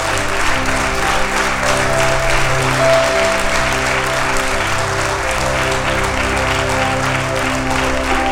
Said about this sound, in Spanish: ¿Alguien puede dar un aplauso al Rey de Reyes?